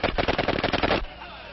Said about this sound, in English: Oh, they've been shot! Oh, he is dying, and Barthou's fatally wounded.